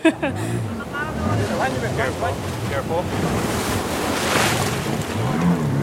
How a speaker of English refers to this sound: we had to go straight into crashing waves with the pirogue head on, essentially gunning it to make sure we could make it over that first breaker